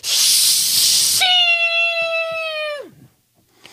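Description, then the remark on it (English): A lit firecracker hisses loudly and steadily for about a second, then turns into a high, steady whistling tone that holds briefly and slides down before cutting off. No one speaks. “Can you light this firecracker?”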